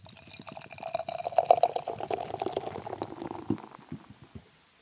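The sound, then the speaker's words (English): Trial by Wombat, an IPA from Thin Man Brewery of Buffalo, glugs and splashes into a glass for about four seconds. It is a fizzy, bubbling pour that rises slightly in pitch before tapering off into a few soft drips. No one speaks. “New beer entering the show.”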